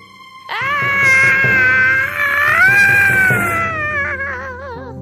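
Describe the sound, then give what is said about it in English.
A witch's long, shrill scream as she melts away wails on for several seconds, wavering as it climbs, then sags lower and trembles as it fades. It is loud and unbroken, with no speech. “As she screamed, the witch melted away.”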